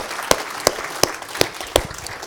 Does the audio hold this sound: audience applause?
yes